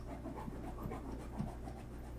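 A dog pants quietly in steady, rapid breaths, soft, with no talking over it.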